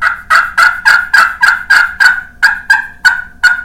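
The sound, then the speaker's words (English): A hand-held turkey call, drawn toward the player in a line, yelps in a steady series of about eleven loud, raspy notes, evenly spaced, with no talking over them. “You can pull it towards you in a line.”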